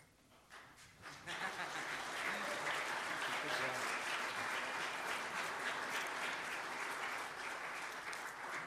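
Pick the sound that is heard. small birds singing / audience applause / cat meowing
audience applause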